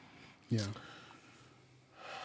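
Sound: deep audible breath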